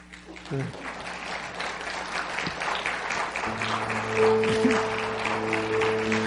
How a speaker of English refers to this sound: And today we are stirred by way of applause.